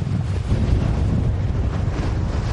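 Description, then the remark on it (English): Strong gusty wind from Hurricane Sally roars and buffets the microphone continuously at night, with churning waves washing against the shore of Dauphin Island, Alabama underneath; loud, no voices. “These gusty winds churning up the waves and the water already lapping up to where we're standing.”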